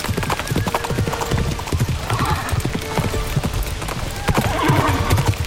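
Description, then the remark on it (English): Rapid horse hooves gallop in a steady, driving rhythm, loud throughout, as riders chase a fleeing scout, with a horse's whinny rising near the end over the pounding. “Faster, you wretched horse!”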